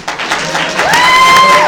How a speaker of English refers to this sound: If it's Loki, applaud now.